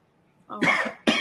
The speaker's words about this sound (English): And that was a real cough. Oh, okay. It was a real cough, but it was fitting too. Timed perfectly.